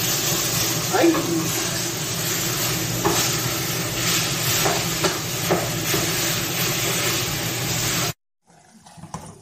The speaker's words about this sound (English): Here, the beef starting to sizzle.